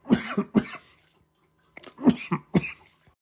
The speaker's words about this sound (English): Very sorry about that coughing fit. Getting over a cold, apparently.